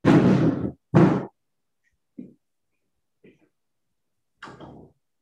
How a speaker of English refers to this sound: Just let me close the door.